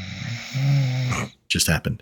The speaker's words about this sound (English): You were hearing … snoring.